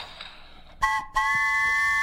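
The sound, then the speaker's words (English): A train whistle is blown for the Follow-Up Junction segment on KAKU 88.5. It sounds two blasts, a short toot then a longer steady one, with a bright, breathy, multi-tone pitch that holds level until the end. No one speaks. “Especially because that means you get to blow the train whistle for Follow-Up Junction.”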